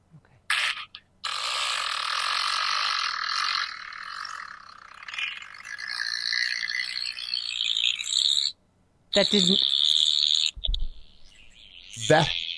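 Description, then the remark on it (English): A long, loud, raspy fart rattles on for about seven seconds without a break, then a few shorter sputtering bursts follow after a brief pause. “That came out of your ass? Sure fucking did. That had length and girth.”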